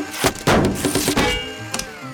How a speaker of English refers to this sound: I like the way a baseball in a blender sounds. Can I do it again?